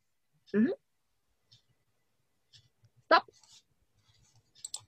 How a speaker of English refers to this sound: so this is the Voltura game, and basically how we're going to start the game is by rolling the dice. So please tell me when to stop.